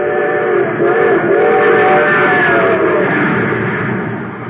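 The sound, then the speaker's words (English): A train rushes along at high speed, its steam whistle sounding in a long, loud, continuous blast over the rumble of the engine, easing off slightly at the end. “Yes, sir, that train's really traveling now because it's supercharged with super fuel.”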